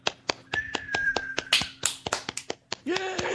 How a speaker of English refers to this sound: We're going to hear a round of applause from our audience.